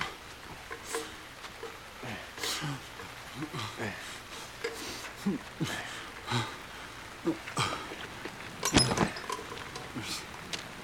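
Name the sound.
rain falling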